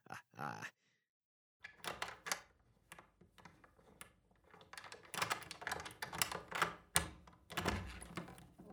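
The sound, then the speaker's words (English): A short burst of noise, a pause, then a run of sharp clicks, clacks and metallic rattles, like doors being unlocked and pushed open, with the handling growing louder toward the end. “let me open these doors before... Officer Cox turns into Frosty the Snowman”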